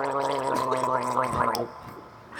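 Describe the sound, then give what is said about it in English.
A person gargles for about a second and a half, a wet, bubbling, voiced gurgle at a steady low pitch that cuts off abruptly, followed by near silence. “I'm sorry, I gargled by accident.”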